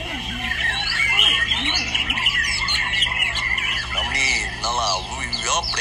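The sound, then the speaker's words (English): Many small songbirds sing at once at a monthly bird-singing competition in a park in Singapore, in a dense, overlapping chorus of fast trills, chirps and warbling phrases, steady throughout, with a low hum underneath. “You need a very attuned ear to appreciate this bird song symphony.”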